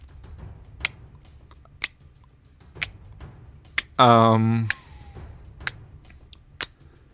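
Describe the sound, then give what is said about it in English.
A voice imitates a ticking clock, timing a 60-second answer countdown with sharp mouth clicks spaced about a second apart. The clicks are steady, interrupted midway by a brief loud laugh or vocal burst before the clicking resumes. “I make a good fucking clock.”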